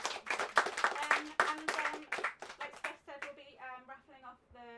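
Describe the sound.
A crowd breaks into dense, steady applause, many hands clapping at once for about three seconds before it thins out and a voice starts talking as the clapping fades.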